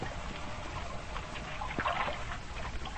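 Water pours and sloshes steadily into a ship's hold flooded with two feet of water, a continuous rushing wash with a few brighter splashes midway, moderately loud, with no voices.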